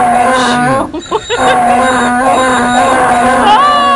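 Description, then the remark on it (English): Loud donkey braying fills the whole moment, a harsh drawn-out honking with a brief catch near the start, sounding like two brays layered over each other. “Wow, was that triple donkeys? No, that was double. That was double donkey.”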